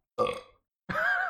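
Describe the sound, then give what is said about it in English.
Two short burps after drinking vodka iced tea, with a brief pause between them; the first is throaty and fades, the second is louder and more drawn out, ending abruptly. “I really hope it got my Bless you, …. Vodka iced tea burp just then.”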